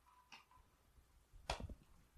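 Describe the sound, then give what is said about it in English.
A timer clock being set for 15 minutes gives a couple of sharp, uneven clicks, the second louder and followed by a brief low rattle, with no one talking. “I'm gonna put 15 minutes on the clock.”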